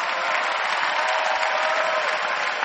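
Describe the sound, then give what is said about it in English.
An audience claps their hands in sustained, dense applause to appreciate a man who stood and read a story aloud, a steady wash of many overlapping claps at an even loudness with no speech over it. “So you cannot clap your hands and let's appreciate him.”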